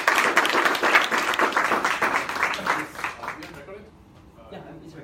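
Dense audience applause, many hands clapping in a steady loud burst for about three seconds, then fading out quickly into quiet room tone.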